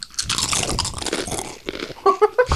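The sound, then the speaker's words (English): Several people crunch Doritos tortilla chips at once, a dense burst of overlapping crisp snaps and chewing, ending with a few short, tonal vocal sounds. “All right, let's all crunch at the same time.”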